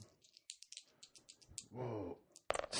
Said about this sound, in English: Probably should have cleared your dice. Your dice fucking hit my dice and stopped.